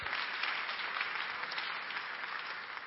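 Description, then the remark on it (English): A church audience applauds steadily to welcome three new members, many hands clapping in a dense, even wash of sound that holds at a moderate level throughout, with no voices standing out. “Do you want to clap and welcome our three new members?”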